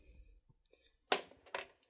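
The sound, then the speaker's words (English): A die, rolled for a dexterity check, tumbles and clatters onto a keyboard, a short burst of hard plastic clicks and rattles that settles after a few bounces, fairly quiet, with no talking. “Yeah, that landed on the keyboard in a weird.”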